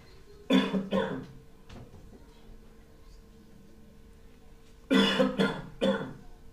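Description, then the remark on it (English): Harsh, hacking coughs erupt in two fits: a pair of loud, rasping coughs, a pause with faint background noise, then three more forceful, chesty coughs close together. “His cough was becoming even more and more devastating by the second.”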